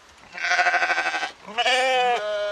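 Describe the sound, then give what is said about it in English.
Two loud, quavering bleats from sheep or goats on a farm next to an open men's prison in Hamalina, southern Finland. The first is wavering and tremulous, the second rises into a strained, nasal cry before trailing off. No one speaks. “Next door is a farm, and one of the prisoners is a caretaker. The animals run toward him when they spot him.”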